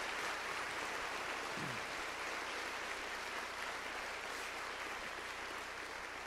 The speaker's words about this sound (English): All of our campuses, would you stand with me this morning? And as you do, let's give all of our campuses a round of applause and welcome them.